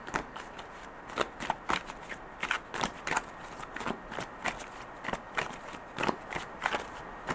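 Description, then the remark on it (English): Tarot cards from a Thoth deck being shuffled, a steady run of quick papery riffles and soft flicks repeating irregularly for several seconds, with no voices. “And then say, stop shuffling whenever you'd like me to stop.”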